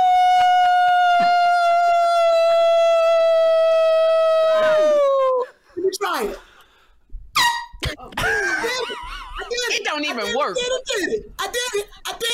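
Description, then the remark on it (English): A voice imitates a wolf howl: one long, steady, loud tone held for about five seconds that sags in pitch at the end. Excited talking and chatter follow. “Will one of you please howl?”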